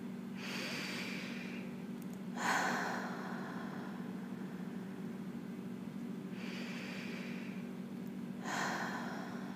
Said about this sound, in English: So go ahead and close your eyes and get settled into your body. And I'd like you to take 3 really deep breaths in.